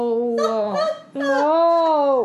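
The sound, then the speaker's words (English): Two loud owl calls follow each other closely, each a drawn-out, harsh, honking cry rich in overtones, with no talking. “Whoa. I hate that owl.”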